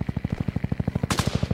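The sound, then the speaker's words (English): Rapid automatic gunfire aimed at a truck, in a steady, unbroken stream of heavy low thuds, about a dozen per second, joined near the end by a burst of bright, crackling noise. No one speaks. “They're shooting at the truck!”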